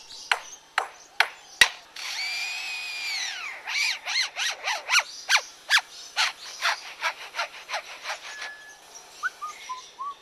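A lyrebird that spent time near a construction site mimics a construction power drill: a few sharp clicks, then a whirring, harmonic drill whine that winds up and down, followed by a rapid string of chirpy, percussive bursts, with no talking.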